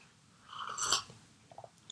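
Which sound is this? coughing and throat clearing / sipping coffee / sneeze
sipping coffee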